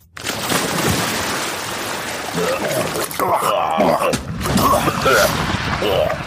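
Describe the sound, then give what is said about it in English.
A loud, steady roar of gushing, splashing water from hot spring geysers, water superheated by volcanic activity, with steam, fills the whole scene from just after the start, with people's voices talking over the rushing spray in the second half. “Yeah, but I didn't know we were going to get wet. It's hot springs, geysers.”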